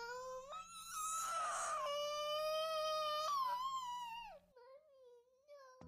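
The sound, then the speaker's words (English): A toddler cries and whines loudly in a tantrum, dropping suddenly to the floor from a parent's arms, one long wailing cry that jumps and wavers in pitch, then trails off into a shorter, quieter whimper. “While I dreamed of hearing this sound, my soul was not prepared for the sudden drops to the floor from the safety of my arms while hearing this sound.”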